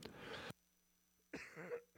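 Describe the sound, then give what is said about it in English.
Two harsh coughs with a short silent gap between them, each a rough burst lasting about half a second, the second slightly more voiced. “And support my cough.”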